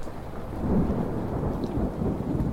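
A deep, rolling peal of thunder rumbles steadily over a steady wash of rain, loud and low, swelling slightly near the start and sustained throughout with no voices.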